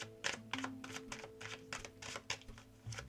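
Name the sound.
shuffling tarot cards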